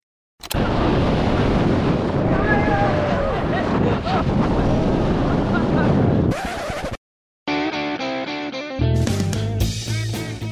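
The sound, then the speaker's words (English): Loud, steady roar of wind rushing and buffeting while skydiving, falling from a plane over Paris, California, for about six seconds, then cutting off abruptly. After a brief silence, a different tonal, music-like passage follows. “Can you tell? We're skydiving.”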